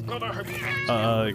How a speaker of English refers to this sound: Why are there so many cats in here?